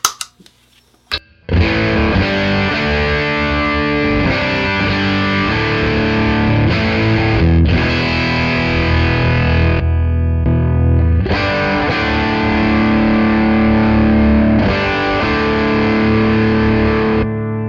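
A heavily distorted electric guitar plays loud, saturated power chords through an overdriven amp, fed by a distortion pedal set at unity level, with thick sustained crunch and brief pauses between phrases after a short quiet start.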